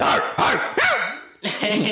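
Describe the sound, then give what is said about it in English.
A person imitates a low-pitched dog barking, letting out about five loud, throaty barks in a quick series with a short pause before the last couple. “Why you got to a lower dog? I can't do a high.”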